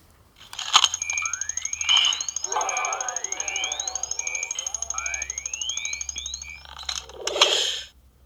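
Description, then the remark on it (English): A thermal detonator sound effect: rapid, steady electronic beeping runs throughout, overlaid with rising sci-fi sweeps and metallic scraping and crunching made from recordings of puppet servo motors, ending in a loud burst; no talking. “So I'm going to play the sound of the thermal detonator in this book.”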